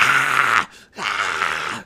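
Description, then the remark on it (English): A person imitates a basilisk's roar with their voice: two loud, raspy, growling bursts, each lasting most of a second, split by a brief pause. “The basilisk roars out, just...”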